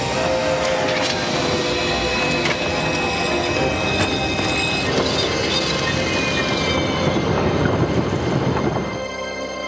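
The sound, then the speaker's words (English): A loud train rumbles steadily past, its wheels letting out high, sustained metallic squeals and occasional sharp clanks over a dense low roar, with no one speaking. “Stop the fucking train!”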